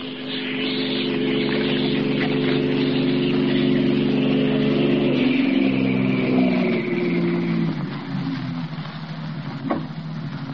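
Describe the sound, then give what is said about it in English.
A car engine drones steadily as a car comes up the street, its low hum holding through the whole stretch, then shifting and dropping in pitch as the vehicle approaches and passes, with no voices. “a car coming up the street.”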